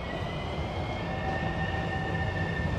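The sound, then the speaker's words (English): A Metrorail train rumbles past at the Arlington Heights Metrorail station, a steady dense roar with faint high tonal whines from the wheels and rails, continuous for the whole stretch with no voices. “And while we're standing here, you may hear a train go by because we are at the Arlington Heights Metrorail where this installation is.”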